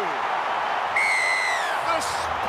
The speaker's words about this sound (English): Now running towards the line is Jared Wallace, there it is, the Dolphins are on the board, listen to the crowd.